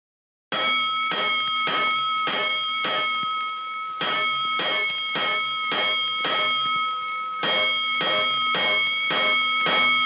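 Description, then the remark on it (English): A fire alarm bell sounds for a five-alarm fire, clanging over and over in a steady, rapid rhythm of about two strikes per second, loud and metallic with ringing overtones, and no voices. “A five-alarm fire, five bells.”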